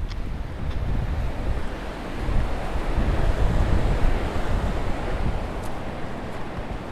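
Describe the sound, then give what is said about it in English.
Powerful water of Falls Creek rushes steadily and loudly, a dense continuous roar with no pauses and no voices, slightly swelling in the middle before settling back. “Falls Creek is now to our left.”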